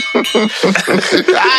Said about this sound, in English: Finally, we have not had very many fight bells sound effects this evening.